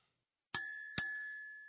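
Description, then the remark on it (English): A small shop door bell rings twice in quick succession, each bright metallic ding leaving a clear shimmering tone that fades slowly. Fairly loud, with no voices around it. “She rips out the bell.”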